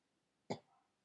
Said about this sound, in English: As you cough. Why are you coughing all of a sudden? Are you nervous? Do you cough when you're nervous?